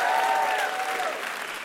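A crowd applauds loudly and steadily, a dense wash of clapping that holds for a moment and then slowly begins to fade.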